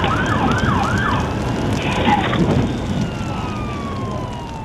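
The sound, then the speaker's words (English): Emergency vehicle sirens howl in repeated rising and falling sweeps, loud, over a dense rumbling background roar with no speech, as a fire chief's vehicle drives up to a house engulfed in flames, recorded by a dash camera. “Over the howl of the sirens, you can hear him say, "Oh my God.”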